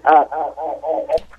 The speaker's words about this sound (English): could you please turn your radio all the way off? We have a terrible echo behind you.